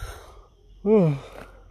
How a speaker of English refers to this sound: And I'm yawning.